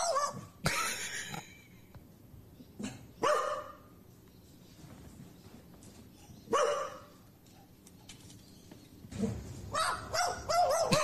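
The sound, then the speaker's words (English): A pet magpie living in a house gives sharp, bark-like calls in short bursts, a handful spaced irregularly over several seconds, fairly loud against a quiet background. “That barking you hear right here is the magpie.”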